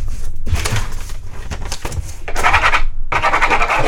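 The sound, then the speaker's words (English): Scratchy strokes of a pen or pencil writing a note on paper, coming in irregular bursts of dry, hissing friction with brief pauses between them, fairly loud and with no talking. “What are you writing over there?”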